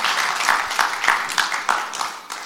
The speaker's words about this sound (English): If you guys want to come, take a seat, give them a hand, give them a round of applause.